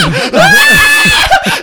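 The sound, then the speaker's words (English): A voice imitates a horror-movie scream, a loud, sustained high-pitched shriek lasting over a second, alone, preceded by a brief vocal lead-in. “I've never heard someone in the movie actually, like, doing a horror scene go, ah!”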